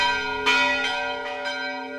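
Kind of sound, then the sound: signal or alarm, bell ringing sound effect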